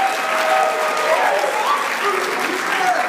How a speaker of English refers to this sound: Wow. And all that applause is for our first guest